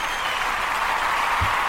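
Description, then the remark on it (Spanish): Steady, dense applause from many hands, dedicated to Formula 1 driver Sirotkin for scoring his first career point, a continuous bright crackle of clapping at an even level throughout, with a brief low thump near the end and no voices. “Hay que dedicarles unos calurosos aplausos.”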